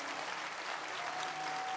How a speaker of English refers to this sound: Amen. Amen. Oh, keep clapping your hands.